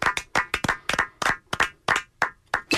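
A few people clap steadily in crisp, evenly spaced claps for a few seconds, a brief round of applause with no talking over it.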